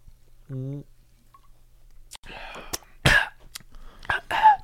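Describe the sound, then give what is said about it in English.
Wet slurping and sipping of the last bit of a Twisted Tea, broken by a few sharp gulps and mouth clicks, follows a short hummed vocal sound, with no talking. “I mean, like, let's finish our Twisted Tea.”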